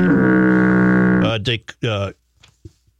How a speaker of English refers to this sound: You got to get foghorn for that.